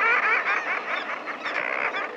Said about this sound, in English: The voices belong to birds, to a nesting colony of common murres, standing on narrow ledges high on the steep face of a sea cliff. Precarious as their nest site is, common murres nest by the thousands along the Pacific coast,